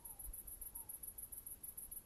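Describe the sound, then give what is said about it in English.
Crickets chirp at night on a lane in a steady, rapid run of high-pitched pulses, fairly faint and continuous over a quiet outdoor background, with a couple of soft low whistles briefly heard. “And crickets, hopefully. Grasshoppers.”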